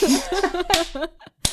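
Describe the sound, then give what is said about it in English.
A hand slaps a thigh twice, two sharp, loud smacks about two-thirds of a second apart, landing amid a laughing, voiced vocalization that trails off just before the second slap. “I'm slapping my thigh.”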